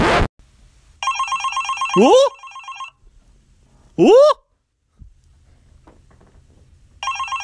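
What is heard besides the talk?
telephone ringing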